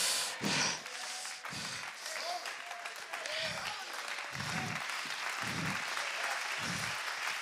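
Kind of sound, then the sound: crowd, audience applauding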